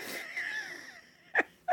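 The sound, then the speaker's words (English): A woman blows her nose: a long, wheezy, honking blast trails off, then two short sharp snorts follow. No one speaks. “She's blown her nose over and over again during this episode.”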